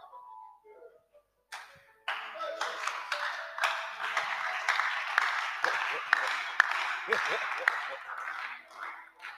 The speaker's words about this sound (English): Those who are not clapping. That's it.